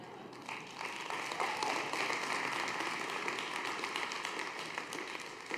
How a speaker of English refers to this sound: Oh, you should applaud more than that.